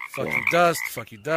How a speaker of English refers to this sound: I'm scrolling for the sound. There you go. I wonder if I knew what they were saying. The friggity friggity frog. You know what they're saying.